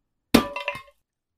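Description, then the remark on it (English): A glass jar holding a mysterious viscous substance smashes with a sharp, loud crash, followed by a few quick clinking bursts of ringing shards before it cuts off into silence. “Yeah, it was a jar of a mysterious viscous substance.”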